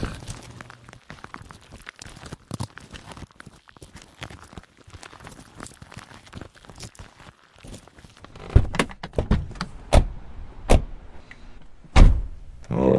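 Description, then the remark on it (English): Footsteps and shuffling as people get into a car, then a series of sharp thunks and clunks of car doors opening and shutting, with a whirring electric window motor, fairly loud. “can we take your car?”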